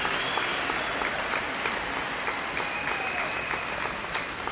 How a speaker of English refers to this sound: And I'd like us to give them a standing ovation. Let's applaud them because they learned a fantastic election.